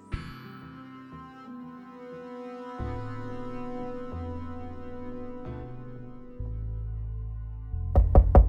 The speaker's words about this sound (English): I awoke to pounding at my door.